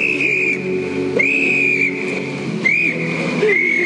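Miss Marple blows a whistle pulled from under her pillow in four loud, shrill blasts of uneven length, the piercing tone sliding slightly as each blast starts, with no voices.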